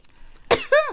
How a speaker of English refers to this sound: Don't cough.